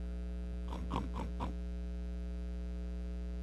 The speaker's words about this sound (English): Did you hear that? A pig? For real?